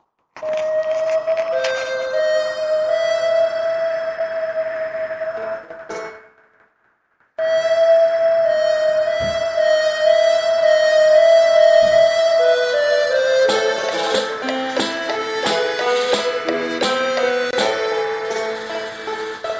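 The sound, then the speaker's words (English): A tumbleweed sound effect run through convolution reverb, smeared into a loud, sustained ringing drone with metallic, bell-like overtones. It briefly cuts to silence, then returns and builds into a dense clatter of chiming tones. “tumbleweed moment, just to impress upon the fact that I only had one convolution reverb sample to play.”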